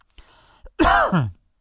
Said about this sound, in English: Excuse my cough and stuff. I was having like an allergy thing from being outside just before I came in.